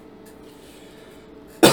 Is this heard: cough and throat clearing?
yes